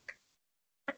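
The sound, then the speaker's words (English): Two brief, sharp keyboard taps, one at the start and one near the end, separated by near silence. The clicks are crisp and moderately loud, with no voices. “You hear me typing?”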